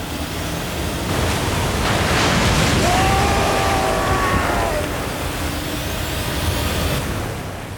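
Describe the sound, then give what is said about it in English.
Ocean waves crash in a steady, roaring wash of surf that swells to a peak midway and then eases off, with a faint high wailing tone drifting through the middle. “Moses swept his staff down, and the waves came racing up. They crashed against Pharaoh's chariot, breaking it like kindling.”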